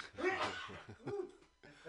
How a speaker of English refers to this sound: Let me sneeze for a sec.